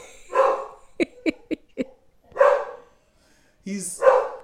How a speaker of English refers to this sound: My deal breaker is this loud-ass dog upstairs.